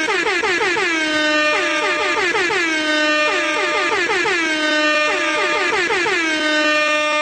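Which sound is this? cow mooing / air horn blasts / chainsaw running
air horn blasts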